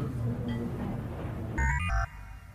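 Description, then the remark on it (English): A telephone rings with a short burst of bright electronic tones stepping up and down in pitch, loud, following a stretch of muffled low background rumble. “Phone.”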